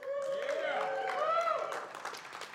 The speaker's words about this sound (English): Well, give them one more big welcome and a round of applause.